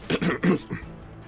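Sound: voice imitating coughing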